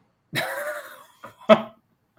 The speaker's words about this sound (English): For real, he's like blowing his nose.